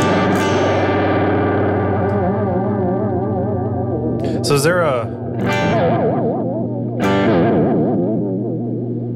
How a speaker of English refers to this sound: It's seasick. Is this a delay or what? It says anyway. It's a delay. A classic vintage style modulating delay.